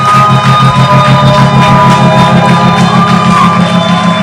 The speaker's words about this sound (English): Clap those hands till your palms blush and shout.